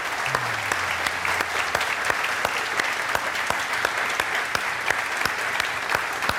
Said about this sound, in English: Please give a round of applause to our all-star panel.